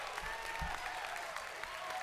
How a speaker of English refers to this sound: Come on. Applause.